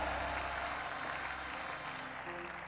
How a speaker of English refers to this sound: And as you are clapping your hands and shouting, so is your blessing.